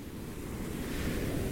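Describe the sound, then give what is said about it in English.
Ocean waves churn against rocks in a steady, loud roar, with rumbling low surf and a faint windy hiss that swells slightly toward the end. No voices are heard. “On the rocks, the sea god is arguing with himself, shaking his trident, raising waves higher and higher.”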